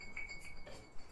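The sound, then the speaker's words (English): A beer mug breaks: a short clatter of glass-like clinks with a thin, high ringing tone lingering underneath, fairly quiet and without any voices. “God damn it, my favorite mug. My favorite beer mug in life.”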